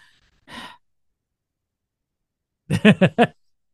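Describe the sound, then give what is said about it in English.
A short, airy breath drawn in, then after a pause a voiced, shuddering exhale in four quick pulses, like a heavy sigh letting the air back out. “He's taking a breath, ladies and gentlemen. He's breathing.”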